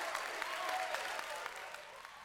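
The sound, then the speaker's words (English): A played audience-clapping sound effect: a burst of applause, many hands clapping in a dense, steady crackle with a few faint cheering tones mixed in, loud and unbroken throughout. “Where is my audience clap? Here it is. Ooh, that's loud.”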